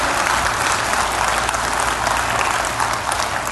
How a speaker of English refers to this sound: Can you give them a huge round of applause? Well done, man.